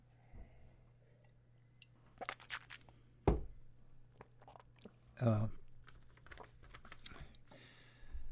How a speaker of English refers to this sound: Mm. Excuse me, another sip.